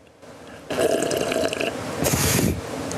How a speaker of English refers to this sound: How about some ASMR of me drinking water? Okay. Hydration. Just check. Get real close to the mic for that.